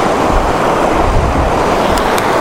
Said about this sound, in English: Just to be clear, these are not big waterfalls. These are very small. These are not Raha Falls in Scotland or Lyot Falls or any of the other bigger waterfalls I've been to. These are just parts of the upper course of a river feeding the reservoirs.